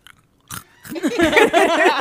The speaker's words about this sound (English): So we're eating hot Cheetos. Hey, hold let's on. Do a contest on who makes the make best crunching sound. Okay. Let me get a good hold one. Hold on. Let me get a fat juicy one.